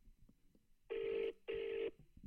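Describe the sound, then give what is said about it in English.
Two steady electronic ringback tones from a phone call to a woman, each lasting about half a second with a brief gap between, clear with faint background murmur around them. “Pass me phone. I'll ring her.”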